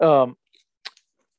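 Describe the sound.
A brief voiced murmur, then a crunchy snack is bitten: a faint click followed by two sharp, crisp crunches in quick succession against quiet.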